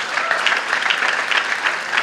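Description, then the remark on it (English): An audience claps steadily, the dense patter of many hands blending into a continuous wash of applause at moderate loudness, with no voices standing out. “I know you're clapping me like I did something, but I didn't do very much.”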